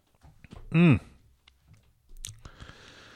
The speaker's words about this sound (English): the cat was actually a little early on getting fed. He needs to wait a little bit. They have a schedule, and he's not adjusting well to the time change, but we'll get there.